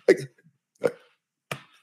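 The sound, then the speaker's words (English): Three short, guttural belches in a row after eating cheddar jack cheese and hard salami, the first the loudest and longest, followed by two briefer, rougher bursts with short silent gaps between them. No one talks. “Did you guys hear that one? I just belched.”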